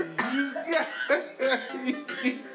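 A run of about six harsh, throaty coughs in quick succession, fairly loud, each burst rough and voiced, with no talking in between.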